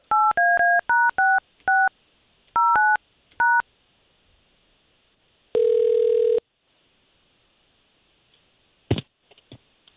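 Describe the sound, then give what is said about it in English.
A phone number being punched in to call a listener, quick, clean keypad beeps, two short bursts of dual-tone presses, followed by a lone sustained tone and a few soft clicks. No one speaks. “Let's get her on the phone.”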